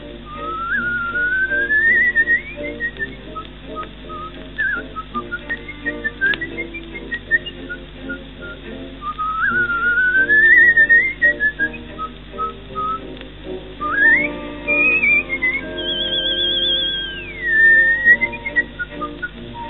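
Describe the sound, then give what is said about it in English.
A person whistles a lilting melody with sliding, rising phrases and bright sustained notes, clear, over a soft instrumental backing with no talking. “So I would make different stylistic choices, but then since I could never whistle this to begin with, who am I to speak?”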